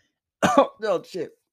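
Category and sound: human body sound, a single cough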